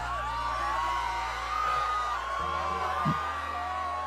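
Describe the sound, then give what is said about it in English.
Several voices scream and yell continuously in the background, sustained and wavering without pause, over a steady low rumble. “So, yep, Pay no attention to the screams in the background.”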